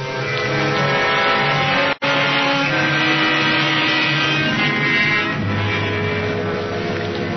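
vehicle, car driving

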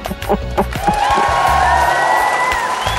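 crowd, applause and cheering

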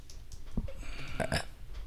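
human body sound, burp into the microphone

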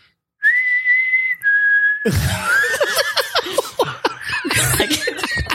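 person whistling a tune

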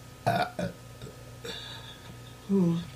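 human body sound, burp

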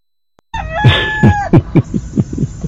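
bird, rooster crowing

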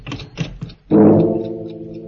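household object, clock striking midnight

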